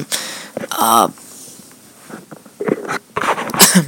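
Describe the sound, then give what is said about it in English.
A person coughs: a harsh, throaty burst and a second strong cough, then after a quiet pause a few more rough, raspy coughing sounds near the end. “sorry, I had a cough there.”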